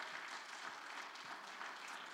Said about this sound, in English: And so let's give the Lord another mighty hand clap.